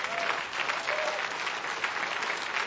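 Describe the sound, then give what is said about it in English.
An audience claps steadily, dense overlapping hand claps forming a continuous bright wash of applause at an even, sustained loudness with no pauses. “Can we clap for that?”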